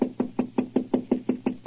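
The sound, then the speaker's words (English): Someone raps steadily on the wooden door of room 212 at the Carlton Hotel, about ten quick, evenly spaced knocks in a row, fairly loud, with no voices. “This is room 212, all right, but there's no answer. I'm knock again.”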